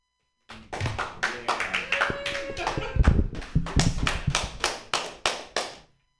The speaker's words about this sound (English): That deserved an even bigger applause. I'm a big deal, guys. You didn't clap at that, you're homophobic.